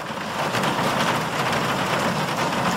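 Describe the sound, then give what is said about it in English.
Steady rain patters on a roof, a dense, continuous hiss of drops with no pauses, fairly loud, with a faint low rumble underneath and no voices. “I'm going to play you Rain on Roof”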